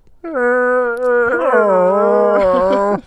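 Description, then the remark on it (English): A strange cat-like cry heard outdoors: one long, loud, wavering yowl lasting nearly three seconds, with a rough, garbled buzz running beneath the tone and growing harsher toward the end. “My cat won't go anywhere near any of the doors, and when we go outside, we heard what sounded like a cat, but it was weird. It had an almost garbled undertone.”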